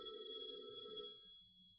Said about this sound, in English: Phone. Brilliant deduction.